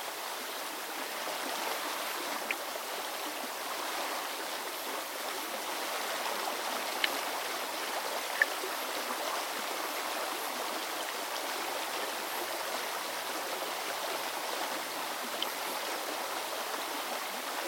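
nature, flowing stream water

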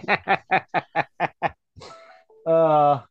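signal or alarm, phone notification sound

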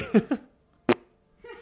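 human body sound, short fart

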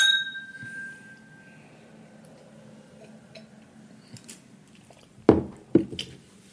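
household object, glasses clinking

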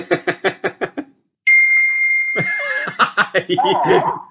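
signal or alarm, computer notification ding

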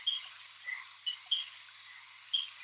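animal, frogs calling

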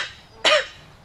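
human body sound, cough

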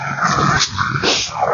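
animal, dog growling

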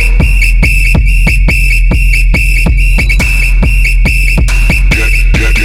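signal or alarm, whistle

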